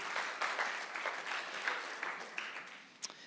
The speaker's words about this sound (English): Amen. Amen. Amen. Round of applause, please, for Jesus. Thank you, Jesus.